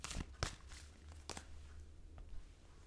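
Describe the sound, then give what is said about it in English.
Cards being shuffled: a handful of soft, crisp slaps and riffling bursts, irregularly spaced, with brief rustling between them and no talking. “Okay, let me pull out the cards. I love these babies. And shuffling them up.”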